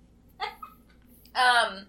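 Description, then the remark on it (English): Two muffled, held-back burps from a woman trying to keep them in after drinking soda: a short stifled one, then a longer, louder one about a second later, with near silence between them. “Our first week here is that she's trying so hard to keep her burps in, folks, but she's, yeah, I've been talking for a while and still reek, soda.”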